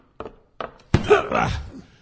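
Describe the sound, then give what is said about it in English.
A door is rammed to break it down: two dull thuds, then a heavier crashing blow followed by a second of rough, rattling noise, with strained gasps and grunts mixed in. “The door must come down.”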